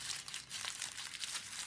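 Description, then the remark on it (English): Steady crinkling of decorative paper wrapping, a dense crackly rustle with soft irregular bursts, continuing throughout without any voices. “Oh, this is so pretty, the decoration paper.”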